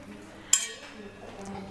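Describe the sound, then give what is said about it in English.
Very hot cheese bread dough being poured and mixed with a spoon: one sharp, bright metallic clink of the spoon against a pan, followed by faint, low stirring and scraping sounds. “It's very hot, as you can tell. I'm gonna pour here and I'm gonna mix.”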